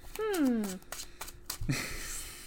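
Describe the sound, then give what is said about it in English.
A voice makes a short falling sound, followed by a burst of papery, riffling rustle as a deck of trading cards is shuffled. The shuffling continues softly to the end. “Can we shuffle it? Yeah. I think these are all the same, yeah. But you can shuffle them if you really want to.”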